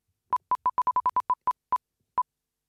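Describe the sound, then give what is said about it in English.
A prize wheel spinning, heard as a run of about eleven short, identical electronic beeps at a mid pitch that start quickly and space out steadily as the wheel slows. No one talks. “Let's spin the wheel again.”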